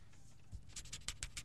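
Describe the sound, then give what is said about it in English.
A quick series of soft scratchy strokes of a pen or pencil writing on a piece of paper, faint, with a few rhythmic scrapes repeating over a second or so. “What, a piece of paper? Yeah. Oh, he's going to write what he's going to.”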